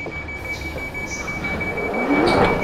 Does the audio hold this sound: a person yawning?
no